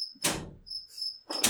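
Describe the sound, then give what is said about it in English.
A cricket living inside a vent chirps in a steady, high-pitched trill that continues throughout, broken by two loud, abrupt thumping bangs near the start and end as someone pushes on the vent. No one speaks. “Oh, that damn cricket's back.”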